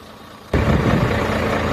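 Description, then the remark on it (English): A faint low hum gives way abruptly to the loud engine of a firefighter support truck in Taiwan as it reverses, keeping up a steady, broad rumble to the end, with no talking. “The first of its kind in Taiwan, the 4 million NT truck was acquired through a donation.”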